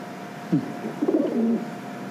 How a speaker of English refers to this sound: Chief, doves have longer tail feathers. That's a pigeon.